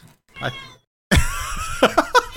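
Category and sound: animal, cat meowing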